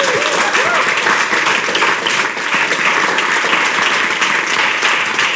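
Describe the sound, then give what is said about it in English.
A crowd applauds steadily, a loud, dense wash of many hands clapping that holds at an even level throughout with a few cheers or voices mixed in. “Audience, give yourself a bloody good round of applause.”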